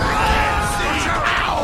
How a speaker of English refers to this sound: Why would they like us? They're cheering. For me. I've never been cheered for in my entire life.